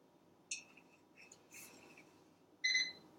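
A microwave gives one loud, steady, high-pitched electronic beep at the end, after a few soft clinks and rustles. No one speaks.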